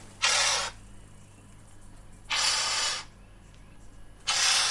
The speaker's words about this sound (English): So almost a hiss-like sound. Yeah, it's a very harsh broadband kind of hissing sound, and all the bower birds produce quite a similar kind of harsh sound. And this is the vocalisation that they use when they're kind of communicating with each other.